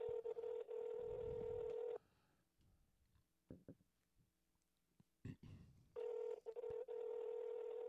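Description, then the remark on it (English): A telephone ringback tone rings twice: loud, steady electronic buzzing tones about two seconds long, separated by a roughly four-second gap filled with faint rustling and soft thumps. “How many rings is this?”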